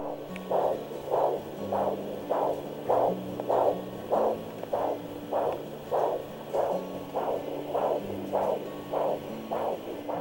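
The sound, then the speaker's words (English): A fetal heartbeat at 6 to 7 weeks of pregnancy picked up by ultrasound: rapid, steady whooshing pulses, about seventeen in ten seconds, repeating evenly over a low electronic hum, with no voices. “At 6 to 7 weeks during pregnancy, this is what the heartbeat sounds like.”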